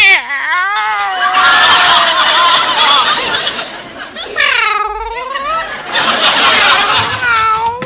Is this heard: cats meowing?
yes